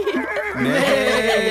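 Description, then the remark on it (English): A person imitates a horse's whinny with a loud, quavering voice that wobbles in pitch and holds steady for about a second and a half, with no other sounds. “I can't believe you turned into a horse.”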